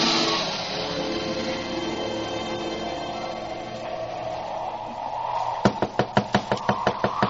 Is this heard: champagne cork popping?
no